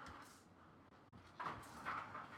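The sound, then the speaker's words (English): An unlocked door shifts in the wind, giving a couple of soft clicks and then two short creaking groans over a steady breathy hiss, quiet. “Nah, it's the wind. That ain't locked the that's door.”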